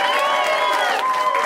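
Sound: audience applause and cheering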